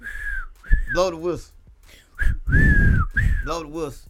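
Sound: whistle being blown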